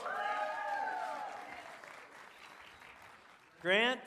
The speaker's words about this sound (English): y'all should cheer for him as he comes up here.